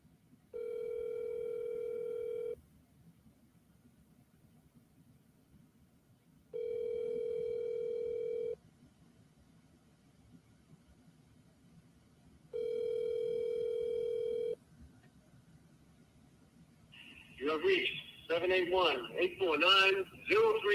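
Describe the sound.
Three long ringback tones on an outgoing phone call, each about two seconds with pauses between, over a faint line hiss, followed by a recorded voice speaking.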